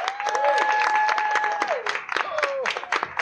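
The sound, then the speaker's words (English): A show audience claps steadily and densely for about three seconds to welcome a celebrity magician as special guest, with a few high whoops and cheers rising above the applause before it thins out at the end. “Please put your hands together for celebrity magician”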